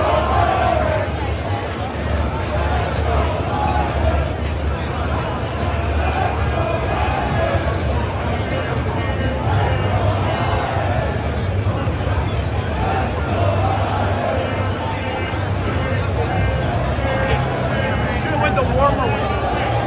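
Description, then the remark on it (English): Dense crowd chatter fills a packed stadium concourse at a home playoff game, a steady, loud wash of overlapping voices and murmur with no single speaker standing out, holding constant throughout. “Yeah, so I don't know if that did that justice or not, but you saw the concourse. It was packed. It was a sea of humanity.”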